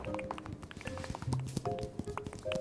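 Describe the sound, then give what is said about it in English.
Rapid, irregular tapping patters along steadily, like drops striking a surface, mixed with faint sustained tones underneath, representing a bone in a story imitating pattering rain. No voices are heard. “Then like pattering rain.”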